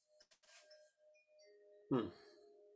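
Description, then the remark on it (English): Soft chimes ring with a steady, lingering tone that hangs beneath brief high shimmers, then a fuller strike rings out near the end and keeps sounding on one sustained pitch. “Like if you listen to these chimes, there's a note that doesn't go off.”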